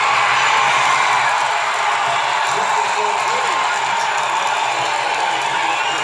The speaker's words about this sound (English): And the crowd goes motherfucking wild.